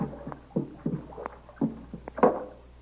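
A canoe drifts up alongside a dock after the paddling stops, with soft lapping and several irregular hollow knocks against the hull, fairly quiet, with no one talking.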